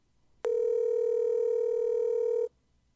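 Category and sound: signal or alarm, telephone ringback tone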